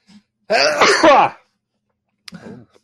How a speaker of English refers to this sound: Wait, I need to sneeze.